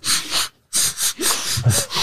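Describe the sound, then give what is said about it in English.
A failed nose flute attempt: a loud run of breathy, hissing nasal blows in short bursts, with a brief pause after the first two and no clear whistled tone emerging. “I can't nose flute.”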